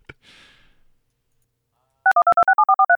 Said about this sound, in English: Slack has some very interesting ringtone noises. It sure does. That was really weird.